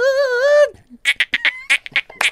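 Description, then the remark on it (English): A voice imitates a dolphin, starting with a sustained buzzy tone, then breaking into a quick run of about nine high, squeaky chirps. No words are spoken. “They go, do that whale noise, that dolphin sound.”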